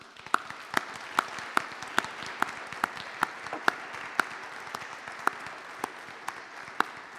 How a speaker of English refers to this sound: to those of you who believe the affirmative won this debate, the team closest to me successfully affirmed the proposition that we do need more male champions of change, please give them a round of applause right now.